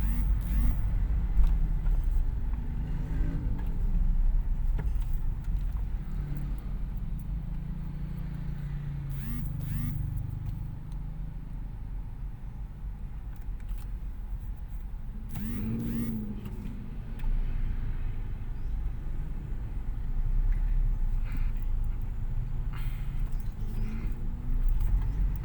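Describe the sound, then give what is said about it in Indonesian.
A steady low rumble of idling and slowly moving cars in a traffic jam at Cileungsi, with occasional engine swells and faint hisses, like vehicles crawling in heavy traffic. “Aduh, ini macet Cileungsi macet.”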